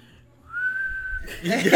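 A person whistles one steady, mid-pitched note for under a second, then the tone collapses into a rush of breathy air, like a whistle attempt falling apart.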